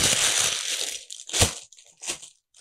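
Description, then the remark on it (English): Baking parchment paper is crumpled: a dense, continuous crinkling rustle that breaks into two sharp, separate crunches near the end, with no voices. “You know how when you're trying to make cookies and you put your parchment paper on the pan and it just like wants to roll up and you're trying to get your cookie on there?”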